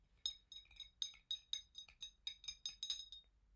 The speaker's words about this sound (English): And I drink it with just a little bit of sugar. So I'm just going to stir that into my tea.